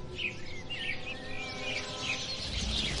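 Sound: sparrows chirping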